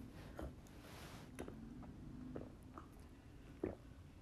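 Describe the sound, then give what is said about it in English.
Quiet mouth noises of someone sipping a drink: a soft slurp, then a few small gulps and wet clicks, with no talking. “Let me grab something to drink. I'm getting drum out that. Let me take a sip.”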